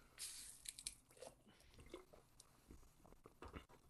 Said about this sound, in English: All drinking Orangina, that's for sure. I will feel you doing the guzzle.